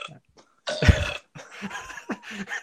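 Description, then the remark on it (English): A loud, drawn-out belch rumbles, starting abruptly and rolling on for well over a second with a raspy, throaty texture, followed by a few softer grumbling bursts. “I figured I'd throw in like a good big belch or something like that for you.”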